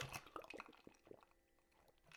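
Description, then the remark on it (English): Someone takes a few quiet sips of water from a bottle, with soft wet clicks and swallowing sounds and no talking. “I've really had to make a mindful effort to drink my water, which is so unlike me. Speaking of, cheers.”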